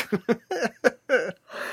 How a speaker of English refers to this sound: Sorry, I was just overcome by a yawn. I'm going through it all of a sudden. Okay, I recovered. I don't know why that yawn hit so hard.